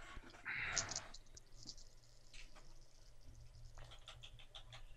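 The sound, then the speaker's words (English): Eight dice rattle and clatter in a quick burst for a tinker roll, followed by a few lighter scattered clicks as they settle, fairly quiet. “I have 8 dice for this.”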